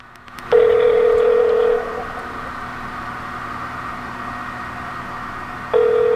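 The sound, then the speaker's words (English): Telephone tones over a phone line as a call is placed and rings: a steady electronic tone sounds for about a second, falls silent for several seconds over faint line hiss, then starts again. No voices. “Oh, for a second I thought I had an 800 number. It's 860.”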